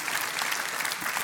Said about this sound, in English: I think we ought to clap our hands, show our love.